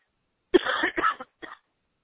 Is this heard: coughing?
yes